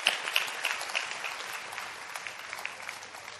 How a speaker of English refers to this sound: Day has come. Clap for the day that has come.